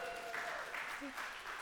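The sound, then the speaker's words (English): Audience applause for a woman who has just read a Bible passage aloud: a dense, steady wash of many hands clapping at an even loudness, with a few brief vocal cheers rising through it. “Give her applause.”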